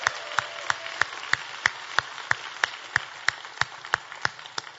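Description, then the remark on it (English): An audience at Word of Truth Family Church applauds its pastors and pastoral staff, with a steady background of many hands and sharp, evenly spaced claps falling into a brisk unison rhythm, about three per second, with no one speaking. “Can you give all of our pastors a big hand clap?”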